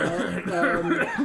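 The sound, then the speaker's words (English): A man coughs in the background in a quick run of short, throaty bursts, four or so in a row, fairly clear and steady in level, with no talking alongside. “We have background noise of some guy coughing.”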